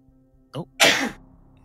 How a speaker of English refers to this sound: Oh. Oh, God. And you sneeze. It's a bad omen.